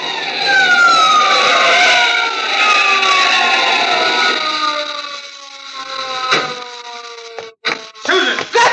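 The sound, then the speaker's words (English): A car skids hard under heavy braking as it comes up on a roadblock, a loud, drawn-out tire squeal with a falling pitch, ending in a few sharp thumps and bangs. No one speaks. “Oh, I thought we'd both go through it when I slammed on those brakes.”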